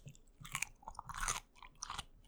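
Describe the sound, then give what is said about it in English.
Close-up crunching into a crisp, fresh pickle for ASMR, a few wet, snappy bites followed by juicy chewing, loud and near the microphone with no talking. “I bet you can crunch into the mic. So get real close.”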